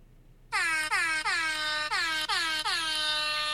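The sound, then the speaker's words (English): A loud, brassy air horn blasts in a rapid series of about seven short honks, each with a slight downward pitch bend, sounding continuous with brief dips between bursts. “All right, you hit the horn. Do it again.”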